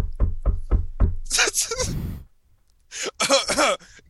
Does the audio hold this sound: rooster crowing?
no